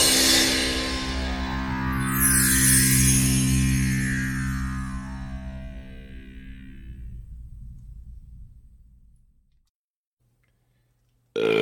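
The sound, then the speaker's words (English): A woman's long, loud burp right into the microphone, droning for several seconds before trailing off into silence, followed by a brief burst of noise at the very end. “Oh, I started the recording just in time to catch that burp.”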